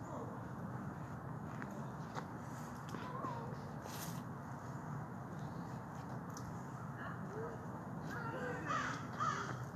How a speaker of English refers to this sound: And then the crow's like, yep, that was a puma, yep.